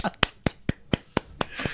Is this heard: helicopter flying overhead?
no